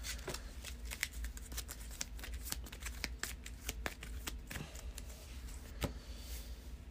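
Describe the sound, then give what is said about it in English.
A deck of cards being shuffled during a card game, a rapid flurry of crisp riffling clicks and snaps lasting several seconds over a low steady hum, with no talking. “Well, no, let's do the combat training and shuffle the rest.”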